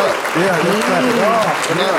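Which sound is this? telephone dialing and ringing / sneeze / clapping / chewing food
clapping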